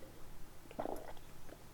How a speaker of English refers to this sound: Just let me have a little slurp of my iced coffee that I'm sitting here sucking on.